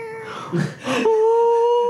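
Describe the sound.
A person imitates a cat's meow: a single drawn-out, whiny vocal tone that wavers at first, then settles into a steady sustained note, clear with no other sounds.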